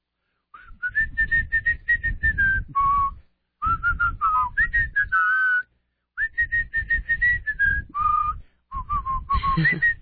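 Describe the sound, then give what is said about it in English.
A man whistles a bright, wandering tune in several phrases separated by short pauses, with steady tones and quick runs of notes. “I'll just stand here and whistle to myself.”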